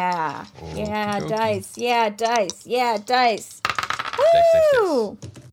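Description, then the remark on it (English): Several people roll dice, which clatter briefly in a quick burst of small clicks across a tabletop, surrounded by excited, drawn-out vocal exclamations. “So why don't each of you give me a roll to assess reality?”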